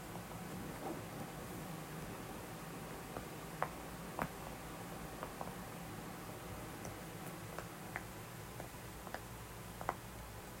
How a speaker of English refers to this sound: So, you can just kind of like listen to like the fan blowing.